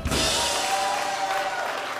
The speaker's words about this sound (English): Give the Lord a clap.